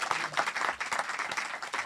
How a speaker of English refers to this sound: Yes, I am waiting for the clapping.